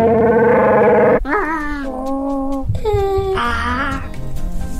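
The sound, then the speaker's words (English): A voice imitates the growling roar of Chewbacca from Star Wars: a few long, warbling, throaty howls that bend in pitch, loud, with no other talking. “Chewbacca roars.”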